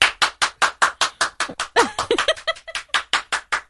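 A single person claps steadily and quickly, around seventeen sharp, bright claps in an even rhythm, with a brief vocal sound, like a laugh, slipping in midway.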